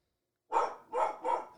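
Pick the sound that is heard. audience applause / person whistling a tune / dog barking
dog barking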